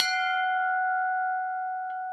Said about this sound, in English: There's a bell here beside the quay, which may be a way of summoning the boat to the shore for collection.